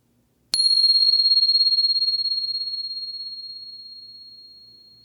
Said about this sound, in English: And here comes the bell.